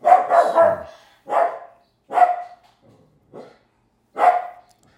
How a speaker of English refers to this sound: In this moment, this one right now, while the dog is barking